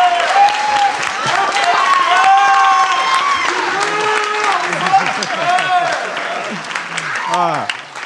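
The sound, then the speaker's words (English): A live audience bursts into sustained applause, dense clapping for several seconds, with scattered whoops and cheering voices rising over it before it starts to taper. “Round of applause for everyone who's been here.”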